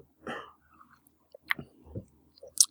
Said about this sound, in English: Here we go. Let me have a drink of water.